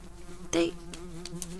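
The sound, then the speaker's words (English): A steady, droning buzz of cricket-like insects hums throughout, swelling into a louder, harsher burst early on, with a few brief raspy flutters following. No voices are heard. “They look like the cricket things that were in my house.”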